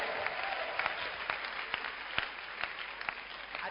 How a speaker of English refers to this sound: So why don't you clap your hands and lift up your voice unto the Lord?